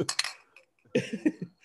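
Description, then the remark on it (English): Two San Pellegrino glass bottles are clinked together a few times, two quick knocks, a short pause, then a looser run of several more. The bright ringing taps are fairly loud, with no talking. “So he got two San Pellegrino bottles, guys, and he's clinking them.”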